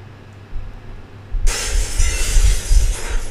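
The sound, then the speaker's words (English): A low rumble gives way to a sudden, loud crash of window glass shattering as a man jumps out through the window, followed by a couple of seconds of harsh crackling and tinkling as the broken pieces scatter. No one speaks. “My God, he jumped out the window.”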